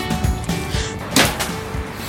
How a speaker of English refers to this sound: Oh, it's one of those automated doors. It opens. I now just walked into the library